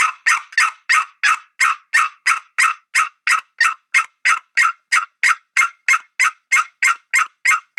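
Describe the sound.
A rapid, steady string of about two dozen sharp hen turkey yelps, imitated with a call, loud with an even, insistent rhythm and no talking.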